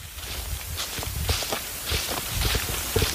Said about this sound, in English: We're standing in the wilderness near the Hickory Ridge Fire Tower, walking along the gravel path in the thick forest. We can hear the sound of leaves crunching beneath our feet.